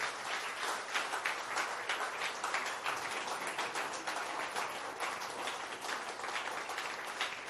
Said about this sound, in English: Praise the Lord. All right, so now let's clap our hands properly.